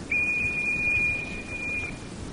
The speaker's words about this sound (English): Listen now. Now we shall try the whistle from this side. Pay attention, please.